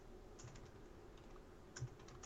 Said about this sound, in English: We out? Or are you typing? Yep. You're typing. I'm leaving it in.